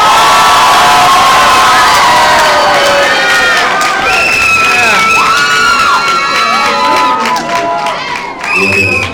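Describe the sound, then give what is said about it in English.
A loud audience cheers and applauds continuously to vote on who wins a Batman versus Black Panther battle, with high-pitched shouts and whoops, many sounding like children's voices, rising and falling over a dense wash of clapping. “So, by a round of applause, I need you guys to say who wins this battle.”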